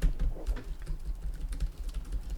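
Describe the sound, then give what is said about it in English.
Rapid typing on a computer keyboard, a steady patter of clicky keystrokes, with a low background rumble and no speech. “I hope you can hear the typing noises.”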